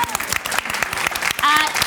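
A burst of applause for a panel member being introduced: many hands clapping in a quick, irregular patter, fairly loud and steady, with a short high vocal whoop rising over the clapping near the end.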